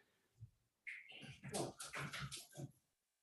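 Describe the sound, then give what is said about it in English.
A dog whimpers, a high thin whine followed by a run of strained, whiny cries lasting a couple of seconds, with no one talking. “I had to get rid of the dog”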